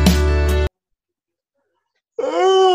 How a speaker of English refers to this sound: Okay. You gotta leave that yawn in.